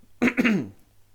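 A short cough: two quick rough bursts from the throat, fairly loud, then quiet. No talking around it.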